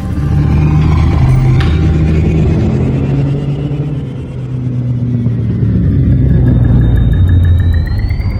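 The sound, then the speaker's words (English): A spaceship engine rumbles deep and steady as the craft docks at bay 2 of Schneider Orbital station in the Delta Pavonis system, its low tones shifting as a thin, high whine rises and climbs in the last few seconds. “Engines disengaged.”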